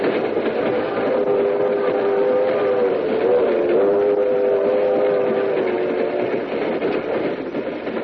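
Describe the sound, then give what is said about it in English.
A steam train rumbles along steadily while its whistle sounds in long, sustained harmonic tones, loud, with no voices. “We'll meet you on the train.”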